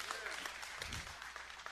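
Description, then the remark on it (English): A crowd cheers and applauds for Jesus, a dense wash of steady clapping with shouts and whoops rising through it for a short burst. “Yeah, okay, let's go ahead and cheer Jesus.”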